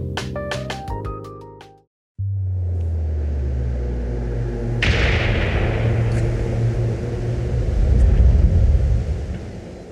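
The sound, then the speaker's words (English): A short musical sting gives way to a low, steady rumble, then a loud thunder clap cracks across it and rolls on heavily to the end. “That thunder clap was really loud in my ears right there.”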